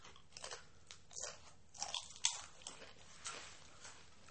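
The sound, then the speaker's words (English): People chewing food, with soft, irregular crunchy bites and mouth sounds repeating over several seconds. The sounds are fairly quiet, a few sharper crunches stand out, and no one talks. “So I did deprive you that extra 5 minutes of chewing.”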